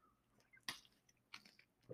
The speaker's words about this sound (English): I'm going to take a sip of my water real quick.